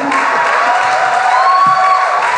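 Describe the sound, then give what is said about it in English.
A crowd claps and cheers steadily with no pauses, a dense, loud wash of noise, with a few whoops and raised voices rising out of it. “The applause is getting less enthusiastic as the...”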